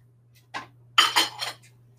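A frying pan is placed on a stove: metal cookware clanks and scrapes against a hard surface, one short knock followed by a louder cluster of rattling clatters, with a steady low hum underneath and no talking.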